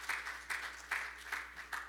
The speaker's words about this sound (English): Would you give the Lord a big hand clap of praise as you're being seated this morning?